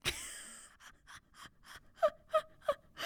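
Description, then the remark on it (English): A sharp, breathy gasp, followed by a quick run of rhythmic, panting intakes of breath, the last few catching with a slight voiced tone. “I like that you added in the gasp there.”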